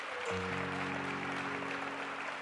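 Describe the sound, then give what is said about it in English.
An audience claps steadily to congratulate this year's graduates, a dense, even wash of hand clapping that fills the whole clip, with a sustained low organ-like chord entering underneath shortly after it begins. “Let's get a Lord a hand clap for those.”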